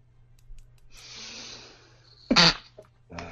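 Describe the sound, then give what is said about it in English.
One person sneezes: a long, breathy intake of air builds up, then a single sharp, loud burst, followed by a brief snuffle. No one speaks. “Bless you. Thank you.”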